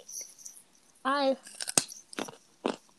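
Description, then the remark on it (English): Loud crunching of someone chewing raw carrots near a microphone, with several sharp bites and munches spread across a few seconds, plus a brief voiced sound in between. “Girl, what did we say about the munching and the microphone? I'm sorry, I love carrots.”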